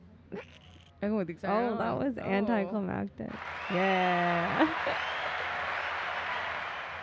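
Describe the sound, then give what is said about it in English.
A steady wash of applause sound effect swells in after a few spoken words and keeps going, dense and even, while a voice briefly talks over its start. “Oh, here we got to hit the applause for claps.”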